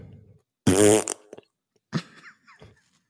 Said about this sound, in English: You nailed it. You nailed the fart noise.